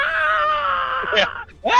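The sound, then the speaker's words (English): A voice lets out a long, loud, wavering scream that holds for over a second, breaks off briefly, then rises into another sharp yell, imitating a shrieking, bellowing mushroom. “I would love for one of these to be screaming mushrooms. You walk in, they just start bellowing out.”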